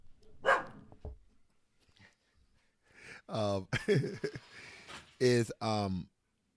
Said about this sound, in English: Sorry, my dog's barking here.